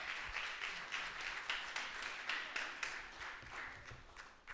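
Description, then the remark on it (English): A church audience gives God a hand clap, a dense, steady wash of clapping with regular beats running through it, sustained at an even loudness with no voices. “Give God a good hand clap.”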